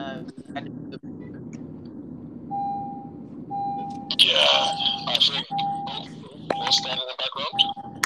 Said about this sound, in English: Whose car is beeping so early? Too early.